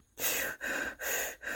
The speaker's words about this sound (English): When it detects a pause in breathing, its survival instinct kicks in and it wakes us up, often gasping and snorting.